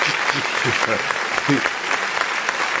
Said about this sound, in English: I get one clap and a snap and a roll. There you and go. A bow. You get the delayed clap.